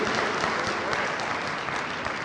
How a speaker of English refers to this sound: Let's give mama a round of applause.